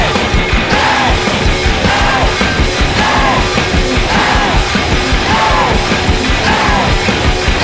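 Voices yell the word "ape" again and again in a steady rhythm over loud, dense music played with two drum sets, each shout rising and falling in pitch, forceful throughout.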